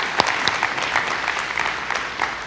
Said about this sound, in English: Can we just give a round of applause to the worship team